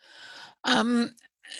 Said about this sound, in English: Clear my throat while you're doing that.